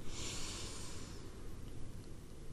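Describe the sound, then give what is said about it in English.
A single deep breath drawn in through the nose during a relaxation exercise, an airy hiss lasting about a second before trailing off into quiet, fairly soft, with no talking. “We're going to breathe in through the nose and hold it for a few seconds.”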